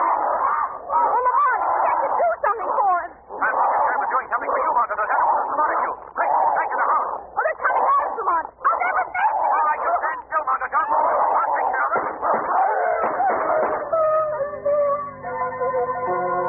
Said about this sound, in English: It's the dog, the giant dog. They're chasing him